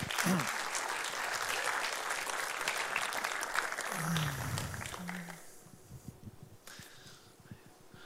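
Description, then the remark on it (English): An audience claps as panel members are invited up, a dense, steady burst of applause for about five seconds, with a few brief vocal sounds mixed in, before the clapping thins out and fades away. “So I'm going to invite our panel members up, and I'd love for you guys to give a big hand of applause for these guys,”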